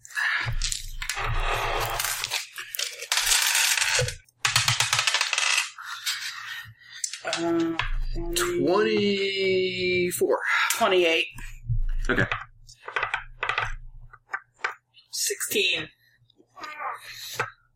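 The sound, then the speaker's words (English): Dice clatter and tumble across a hard tabletop in several rattling bursts, while people talk and one voice briefly sings or moans over the noise. “My dice all over.”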